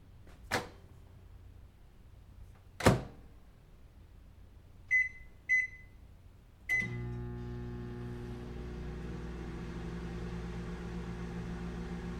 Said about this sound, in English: Here, stick it in the microwave. Let's send it off to flash drive heaven.